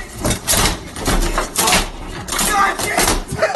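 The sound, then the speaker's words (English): An enraged man bangs and slams a door repeatedly, with four or five loud, booming thuds at an uneven pace, forceful, with muffled voices faintly underneath. “Beat up your door, throw shit in your own house.”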